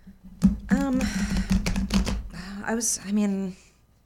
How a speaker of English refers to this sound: you're going to shuffle the cards and think about something that you would like guidance about. It can be anything, big or small. And as you're shuffling, just kind of share with us anything on your mind that's coming up.